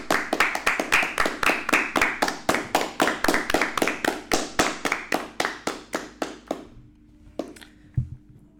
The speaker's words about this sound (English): I think we should give a round of applause to the Bills. We should.